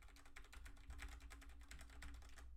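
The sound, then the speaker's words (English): Rapid, steady clicking of computer keyboard arrow keys, many quick taps in an even rhythm, fairly quiet, with no voices. “I'm just clicking the arrow keys right now.”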